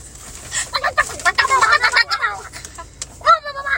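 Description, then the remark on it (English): A person imitates a chicken, producing a rapid run of fairly loud clucks and squawks, then a short pause before a final burst of clucking. “Are you gonna like snap? Yeah. And start speaking so, fluent chicken.”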